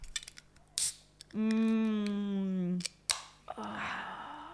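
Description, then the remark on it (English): A Coke Zero can is opened in a studio: a sharp pop of the tab cracking open, a voice humming a sustained note, another crisp click, then a steady, soft fizzing hiss. “What a treat, hey? Coke in the studio.”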